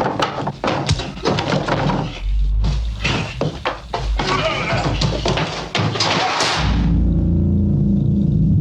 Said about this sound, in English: 40 some odd years later and we still haven't topped the slamming of the metal door.